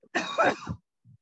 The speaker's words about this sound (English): I think that cough was actually warranted into it.